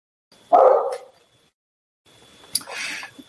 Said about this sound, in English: Now you're going to hear my dogs bark because they heard the doorbell ring.